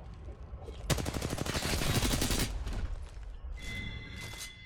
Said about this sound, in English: There was gunfire and everything, and I killed a guy.